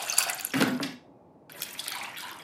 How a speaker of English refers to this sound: So before you start frying everything up, you have to mix water with the tamarind paste. You just do that up until you you have like a good amount of mixture.